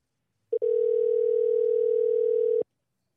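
A phone line's ringback tone: after a tiny blip, one steady two-second electronic ring plays clearly through a handset while the call waits for someone to pick up, then stops into silence.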